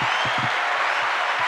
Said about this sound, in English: Can I get a round of applause, please?